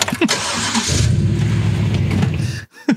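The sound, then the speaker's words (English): A pickup truck engine cranks and catches as Wayne moves his truck up to the front door of a bar, settling into a loud rumble for a couple of seconds before cutting off abruptly, followed by a brief short sound. “Wayne moves his truck up to the spot by the front door just as Coach comes out of the bar, and they almost hit Coach”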